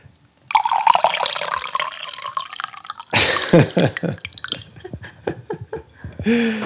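Tea pours into a cup in a steady splashing stream for a few seconds, then breaks into trickles, drips and light clinks as the pour tapers off.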